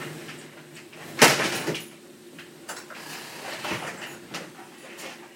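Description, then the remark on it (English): A door is opened to let a dog in on a rainy day in Minnesota, with one sharp clunk of the latch, followed by a few softer knocks and rustles against a steady low background hiss. No one speaks. “And I'm going to let in my dog.”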